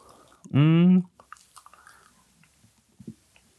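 A short, loud throaty burst is followed by a scatter of soft wet mouth clicks and smacks as someone spits out a wad of chewing tobacco.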